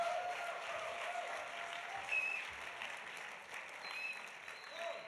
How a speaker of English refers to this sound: Come on, give the Lord a hand clap of praise tonight.